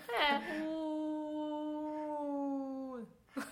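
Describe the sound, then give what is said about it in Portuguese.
A person vocally imitates a long, wavering crying wail, a sustained "wooo" tone held for about three seconds that sounds almost like a howl, with a brief voiced sound at the end; it imitates the Chinese crying onomatopoeia "u", the same sound as the number 5. “Por isso, o número 5, u, é, tem é... o mesmo som da onomatopeia . De chorar, né?”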